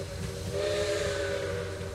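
A steam train whistle blows in one long, unbroken blast, a loud steady chord over a breathy hiss of escaping steam, with low rumbling underneath and no voices.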